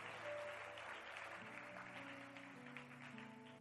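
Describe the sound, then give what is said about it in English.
An audience claps steadily for a few seconds, a dense patter of many hands, while a sustained instrumental tone hums underneath with shifting notes. “Give the Lord a wonderful clap of.”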